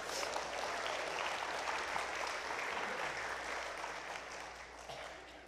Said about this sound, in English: You can clap for him. That's all right.